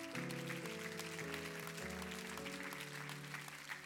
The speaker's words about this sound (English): Amen. Clap for that.